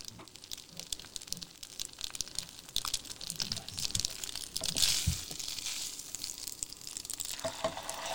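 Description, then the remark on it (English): Al dente pasta, just moved from the pot, sizzles in a frying pan: a steady bright crackling hiss with scattered pops and a brief louder burst midway, no one speaking. “So here we have now transferred the al dente pasta from the pot into and the frying pan.”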